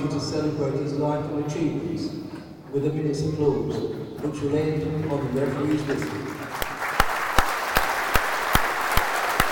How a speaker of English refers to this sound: we're lining up now for a minute's applause